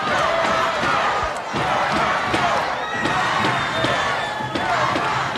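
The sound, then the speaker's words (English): A large crowd at a Mid-Atlantic Championship Wrestling match chants "go down, go" and roars loudly and without letup, a dense wall of voices with a few sharp thuds and slams breaking through the din. “Listen to our crowd with a go down, go chant.”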